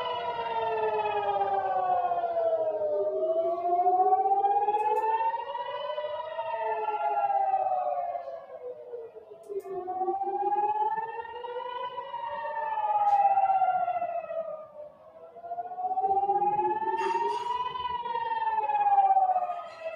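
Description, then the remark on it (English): A rocket warning siren in Ashkelon, Israel, sounding during a barrage of rockets, wails continuously, its pitch slowly rising and falling in long, repeated sweeps. The tone is loud and steady with rich harmonics, and no voices are heard. “That's a weird sound of a siren.”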